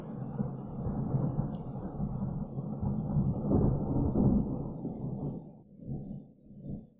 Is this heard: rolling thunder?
yes